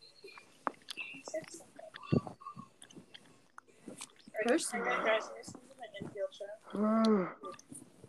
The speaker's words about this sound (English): Just so you know, that was a yawn.